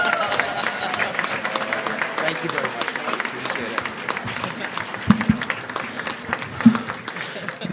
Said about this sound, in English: Another round of applause, please.